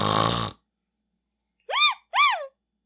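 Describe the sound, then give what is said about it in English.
A child snoring while napping in a park: one rough, rasping inhale, then two short whistling exhales that rise and fall in pitch, with brief silences between. No talking. “A kid? Napping in the park?”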